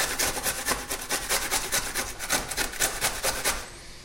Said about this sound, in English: And next, I'm just going to coarsely grate that. Always do it from a coarse grater because you want to actually get those lovely crunchy fruit pieces in your muesli.